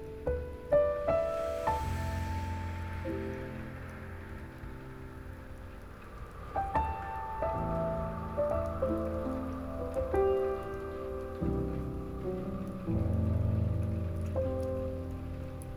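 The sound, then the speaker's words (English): Raindrops patter steadily on a hard surface for the whole stretch, moderately loud, blended with soft, sustained melodic tones that rise and shift underneath. “Hearing nothing but its ventilated hums as they harmonize with the sweet crashes of the raindrops.”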